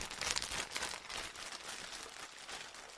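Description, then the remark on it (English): A plastic packet is handled and torn open, with continuous crinkling and rustling crackles lasting a few seconds and no voices. “Here are my packet opening noises.”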